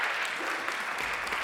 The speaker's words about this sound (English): but we should cheer for him anyway. He does a great job with that.